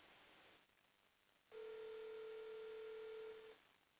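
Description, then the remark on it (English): A call to a woman rings out over a phone line: a single steady ringback tone lasting about two seconds, thin and telephone-filtered, after a moment of quiet line hiss. No one speaks. “Okay, let me give her a call so she can share what she may need even within a community.”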